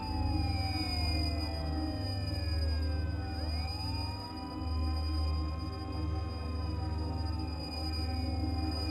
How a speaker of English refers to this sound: Listen. Do you hear it? It's a curious humming sound that seems to come from inside the object. I'll move the microphone nearer.